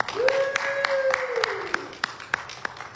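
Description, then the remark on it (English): Audience hand clapping in a steady, even rhythm for the first guest of the show Driven in Purpose, about ten sharp claps over a few seconds, with a sustained mid-pitched tone sounding underneath during the first half. “Y'all give her a big hand clap.”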